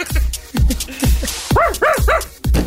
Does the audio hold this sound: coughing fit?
no